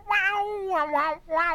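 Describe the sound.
A voice imitating a screeching electric guitar: one sustained, nasal wail that swells three times, its pitch bending and wavering like a bent string. No one speaks.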